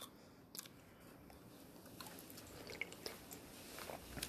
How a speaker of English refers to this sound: Taking a sip of some peach juice. What is this? Guava juice.